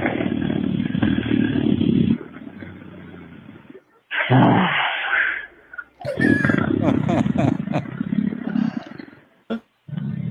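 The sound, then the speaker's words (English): A person imitates a roar with the voice, a loud, rough, growling sustained sound in several bursts, rasping and throaty like a big cat, with brief breaks between them. “And, also, before I do my famous roar,”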